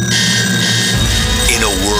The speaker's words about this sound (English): Your alarm clock goes off too early.